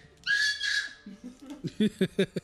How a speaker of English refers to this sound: Apologies to the podcast listeners. Baby scream. Baby is enjoying the game. Yeah, he's loving the attention.